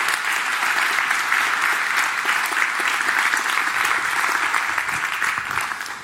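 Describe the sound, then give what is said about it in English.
An audience gives a round of applause for three people: dense overlapping clapping at a loud, even level for several seconds, tapering slightly at the end. “Well, do you guys give all three of them just a round of applause and gratefulness for what's going on?”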